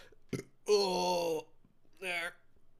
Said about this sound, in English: Burp. Ugh. I'm sorry. I know I'm fucking disgusting. You don't gotta tell me.